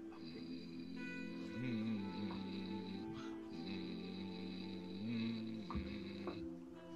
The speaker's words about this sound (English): And then I'll start to chant in the way of my tribe when we send people off when they pass. It'll just be a low rhythmic hum.